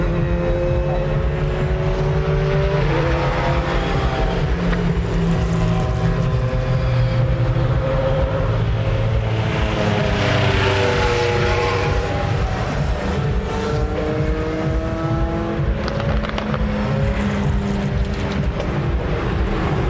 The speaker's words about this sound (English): hands-on speed at Le Mans 2011 at night. 3 o'clock in the morning, the race has been running for 12 of its 24 hours. The current car leading is the only Audi left in the race, the number 2 Audi